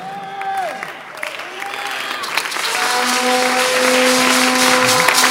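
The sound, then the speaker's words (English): A church audience claps and cheers in praise of the Lord, the applause swelling from a moderate patter into a dense, steady roar, with sustained tones from an organ or keyboard ringing beneath the crowd. “Oh Lord, I wish somebody is clapping better.”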